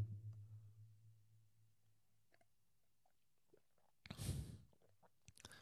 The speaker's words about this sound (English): But so another sip of tea.